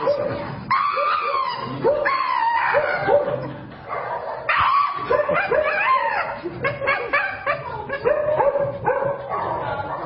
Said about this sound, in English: But something that they're notorious for is something called the Shiba scream. The Shiba scream. And so I have a video to kind of show you guys, but this is what the Shiba scream will look like.